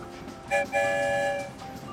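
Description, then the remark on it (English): A single train whistle toot meaning yes, bright and steady, lasting about a second after a brief stuttered start, over a faint background hum. “One whistle means yes.”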